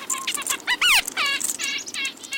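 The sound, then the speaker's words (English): A dozen or more small birds, including chickadees, kinglets, nuthatches and a downy woodpecker, chirp and scold at once while mobbing an owl, their sharp overlapping calls coming in quick, agitated bursts, fairly loud, with no voices. “a dozen or more small birds dart back and forth above and below the owl.”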